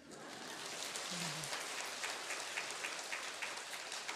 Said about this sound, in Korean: 박수 한번 쳐줘요.